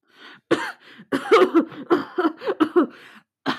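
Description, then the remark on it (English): A sudden loud gasp breaks the quiet as someone revives after being given a red potion, followed by a run of ragged, sputtering coughs and strained breaths in uneven bursts before a final sharp intake. “Then suddenly, a loud gasp as Lunamote's body kicks back to life.”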